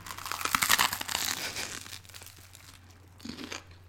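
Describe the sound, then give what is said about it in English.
A loud crunch of biting into a crisp buttered radish, with dense crackling bursts in the first two seconds fading into softer chewing crackles and a steady low hum underneath. “And this is going to be crunchy.”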